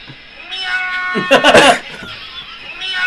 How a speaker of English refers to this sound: But it just says my cat outside my room at 2 a.m.